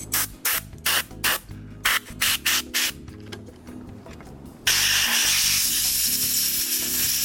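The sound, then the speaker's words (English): An aerosol can sprays onto the brushes and commutator of an electric motor in a quick series of short, sharp hissing bursts, then after a pause lets out one long, loud, continuous spray, with no talking. “And I'm gonna spray on the brushes, and I think this is called the commutator.”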